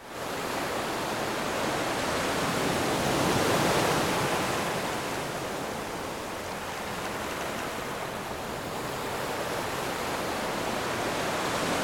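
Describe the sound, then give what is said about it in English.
A steady, broad wash of gentle ocean surf on a beach, swelling softly once before settling into a continuous hiss. There are no voices, only the enveloping rush of water. “You notice the sound of the gentle waves crashing on the beach.”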